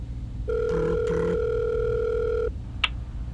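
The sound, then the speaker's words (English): A steady, mid-pitched telephone dial tone hums for about two seconds while a couple of brief keypad beeps sound over it as a call is placed to Wild Times emergency services and security, then it cuts off, followed by a short click. “Beep, boop, boop. I'm calling Wild Times emergency services and security.”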